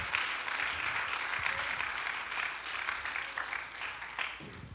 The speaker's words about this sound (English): Would you clap your hands right now and thank the Lord for his goodness today?